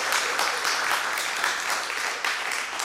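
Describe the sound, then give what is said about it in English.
An audience applauds steadily to show appreciation for their football team, a dense, bright wash of clapping that holds at a fairly even loudness for the full few seconds with no voices standing out. “But can we show some appreciation for representing?”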